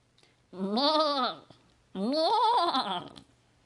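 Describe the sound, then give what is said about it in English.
A goat bleats twice, loud, each call a wavering, nasal cry lasting about a second, separated by a short pause, with no other sounds around them, introducing the Inspiration Goat segment. “But for now, let's get to Inspiration Goat and see what they have brought us today.”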